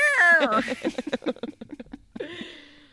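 Cats meowing insistently for their bedtime treat: a long, drawn-out meow, a quick run of short chirpy calls, then another rising-and-falling meow at the end.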